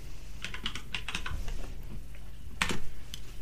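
Mechanical keyboard clicks tap out in a quick irregular burst of keystrokes, pause briefly, then return with a louder cluster near the end; close and crisp, with no talking.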